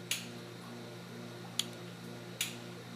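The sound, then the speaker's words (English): Mantis shrimp in lab aquariums clicking underwater: three sharp, bright pops spaced irregularly over a few seconds, set against a steady low hum with no voices. “It's pretty, there are lots of crackles and pops, especially if people just fed them snails.”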